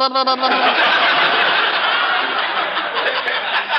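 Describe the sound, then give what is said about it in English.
A man's voice loudly imitates a sputtering old car engine, starting with a buzzy hum and breaking into a continuous raspy, rattling splutter for a few seconds. “Now, who would want to steal my car? Somebody that goes...”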